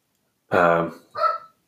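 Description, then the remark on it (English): A dog barks twice in quick succession, a longer, full-throated bark followed by a shorter one, clear with no other sounds around it. “Not my dog barking.”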